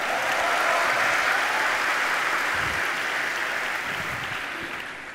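A crowd claps steadily and loudly for about five seconds for an audience member who asked a question, a dense wash of many hands with no pauses, easing off slightly toward the end.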